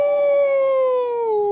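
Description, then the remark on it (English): A person imitates a wolf howl with a single sustained, loud tone that slowly slides downward in pitch and tapers off at the end, with no talking over it. “Mine was more realistic. It actually sounds like a wolf.”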